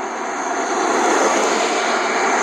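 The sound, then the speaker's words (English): A steady, loud engine roar that holds at an even level for a couple of seconds, a broad whooshing rumble like a car engine sound effect, with no voices. “Cars.”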